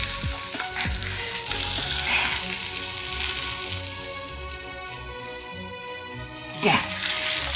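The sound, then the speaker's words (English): Steady sizzling and crackling of chicken breast frying on a George Foreman electric contact grill, with occasional scraping and clinking of a plastic fork against it. “One of the main problems that I ran into was you need real silverware in order to cook with a George Foreman.”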